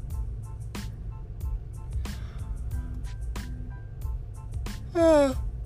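A brief voiced yawn near the end, its pitch sliding downward, over a steady low vehicle rumble in traffic and faint sharp clicks recurring about once a second.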